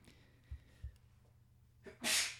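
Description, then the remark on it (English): A single loud sneeze, preceded by a sharp intake of breath, bursts out as a broad hissing blast. No talking accompanies it. “Sneeze. I swear that isn't Corona.”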